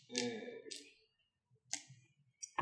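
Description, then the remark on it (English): Several sharp plastic clicks and clacks as dice, including six-sided and ten-sided dice, are set out on a table for a game, coming in short irregular bursts with faint background murmur between them. “Okay, I'm just gonna put dice for taking if you need it.”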